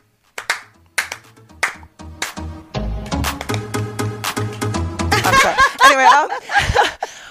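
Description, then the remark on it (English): A slow clap starts with a few spaced, crisp hand claps that gradually speed up, then blends into a busier wash of claps with voices and some laughter toward the end. “Can we take a moment? Slow clap”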